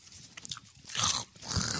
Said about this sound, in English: Since we're all chewing into our microphones right now.